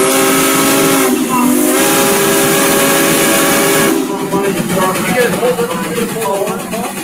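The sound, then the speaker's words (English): A steam traction engine hisses loudly and continuously with blow-by from piston rings needing replacement, escaping steam with a ringing whistle-like tone at first, then turning into a rougher, fluttering hiss for the rest. “Look at the blow by. That thing needs new rings.”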